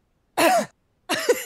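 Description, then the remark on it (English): A voice imitates a maskless man coughing freely with two loud, open-mouthed coughs separated by a brief pause, each a raspy, breathy burst with a throaty edge and no other talking. “And also I was not impressed because he, trying to think, maskless and free coughing.”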